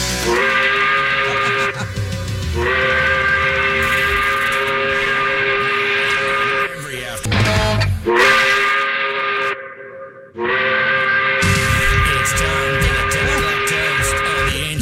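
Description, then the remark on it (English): A loud, sustained steam whistle blows in long harmonic blasts, cutting off briefly a few times with hissy gaps before sounding again, dominant with no talking over it; the 10 o'clock whistle on Rock 95.5, Chicago's rock radio station. “Pull that whistle, man.”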